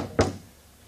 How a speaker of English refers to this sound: And you go up and you knock on the door.